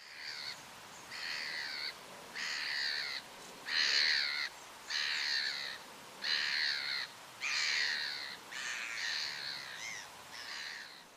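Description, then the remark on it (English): A black-headed gull gives a run of about ten harsh, rasping kiar calls in a steady rhythm, fairly loud, with no voices. “one of the more common being a harsh kiar”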